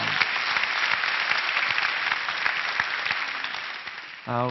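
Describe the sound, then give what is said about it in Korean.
Steady audience applause at a lecture, a dense crackle of many hands clapping at an even level for about four seconds, then a brief voice starts speaking as it fades. “이분들에게 좀 박수를 좀 보내시죠.”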